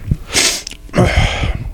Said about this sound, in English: Hold on, I have to sneeze. Bless you.